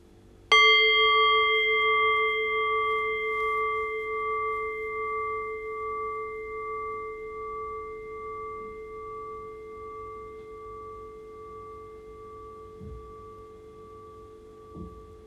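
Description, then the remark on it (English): A single meditation bell is struck once, ringing out with a clear, bright tone that slowly decays over about fifteen seconds, leaving a long, gentle fade toward silence. “Allow the fading bell to guide your awareness into silence.”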